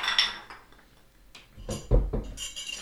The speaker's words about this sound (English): So for this, the recipe that I'm using, I'm going to throw a couple of nice large cubes in my mixing glass here.